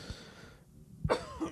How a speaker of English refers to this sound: Anyway, coughing all over the place.